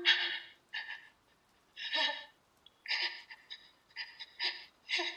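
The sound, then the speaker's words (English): Heavy, rasping breaths repeat in quick uneven bursts over a phone line, some drawn-out, some short and gasping, fairly loud with a thin, hissy tone. “This time, she hears breathing.”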